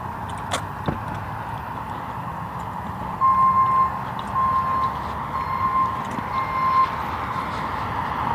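A city truck's reversing alarm sounds a steady series of high, evenly spaced beeps against a constant low rumble of outdoor traffic noise. No one speaks.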